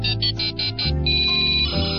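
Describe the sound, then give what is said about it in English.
A telephone ringing tone sounds clearly and fairly loud, a rapid pulsed trill of about five quick bursts that then settles into a steadier, continuous electronic ring, as someone phones a friend for help with a quiz question, with no one speaking. “Yeah, you can phone a friend. I'm going to phone, here we go.”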